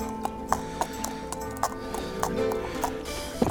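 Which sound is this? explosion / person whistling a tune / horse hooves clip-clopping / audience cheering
horse hooves clip-clopping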